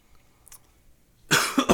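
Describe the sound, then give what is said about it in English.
A single loud, harsh cough bursts out after a moment of near silence, followed by a short second rasp as it trails off. “I hate it when I cough, man.”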